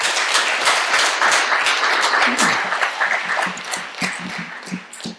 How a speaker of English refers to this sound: What a great bunch of patriot heroes we have here tonight. Let's give everyone else a clap, everyone here.